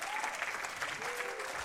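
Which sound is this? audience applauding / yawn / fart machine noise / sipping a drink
audience applauding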